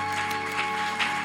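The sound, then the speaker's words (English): A church audience claps their hands for the Lord in a dense, steady patter, with a sustained keyboard tone humming underneath and no voices speaking. “Put your hands together for the Lord if your hands are yours.”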